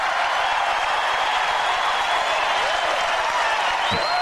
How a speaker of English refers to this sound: They haven't even used your clip of applause.